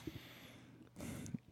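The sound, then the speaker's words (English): A single quick sneeze bursts out after a moment of near silence, a short, soft, breathy puff of noise, with no talking around it. “Bless you”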